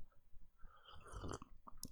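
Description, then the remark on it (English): A sip of eggnog, with a wet slurp in the middle, then soft swallowing and small mouth clicks. It is quiet, and no one speaks. “All right, let's take another sip for good measure, because we're losing it a little bit here.”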